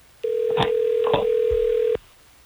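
A steady telephone dial tone hums for nearly two seconds as Hot 101.5 radio hosts in Tampa Bay place an on-air call, with a couple of sharp clicks of buttons being pressed partway through, then cuts off abruptly. No one speaks.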